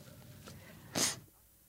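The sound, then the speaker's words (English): A single short, forceful nose blow: a loud, breathy burst of air standing out from quiet room tone, preceded by a faint softer puff. “I feel the need to blow my nose.”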